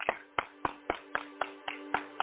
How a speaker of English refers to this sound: Come on and clap glad hands for Jesus.